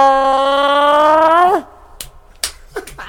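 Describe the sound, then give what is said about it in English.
A voice imitates a gurgle with a sustained, slowly rising vocal tone for about a second and a half that cuts off abruptly, followed by a few sharp, quiet clicks. “That gurgle was great.”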